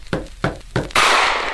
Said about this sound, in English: Great heavens! That was a revolver shot!